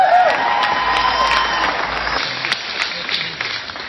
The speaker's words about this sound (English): It is my deep honor to be able to present this award to two friends of mine, so please join me and give a huge round of applause for the 2022 Citizens of the Year,